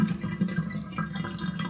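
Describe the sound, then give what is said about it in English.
Water gurgles and trickles steadily as a bathtub drains, a continuous swirl with small drips and bubbling, no voices. “That's a bathtub drain.”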